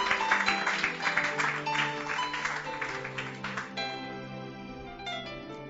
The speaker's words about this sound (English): Why don't you give Jesus another hand clap?